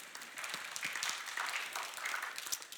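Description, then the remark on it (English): A crowd applauds steadily, many hands clapping in a dense, even patter that holds at a moderate level throughout, with no voices standing out. “I know you love the applause of men, so yeah.”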